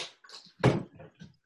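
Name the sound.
door being closed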